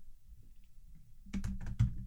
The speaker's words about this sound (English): I'm typing right now.